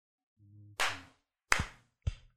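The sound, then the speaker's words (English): A low, steady hum gives way to a rough burst of noise, then two sharp, crisp hand-clap smacks ring out about half a second apart, with no talking. “I did a 1 clap.”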